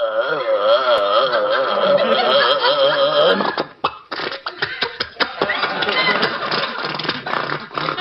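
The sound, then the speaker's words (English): A voice imitates a sightseeing tour bus engine as the driver starts it up: a loud, wavering revving drone for a few seconds, a brief break, then rapid choppy sputtering bursts that keep chugging steadily. “All right, let us board the bus, and we are off as the driver starts up the mighty motor.”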